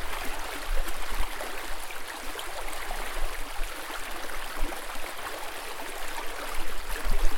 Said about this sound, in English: Water does more than stand and soak. It flows. At every turn, it seems there's a brook, stream, or some other type of rushing water.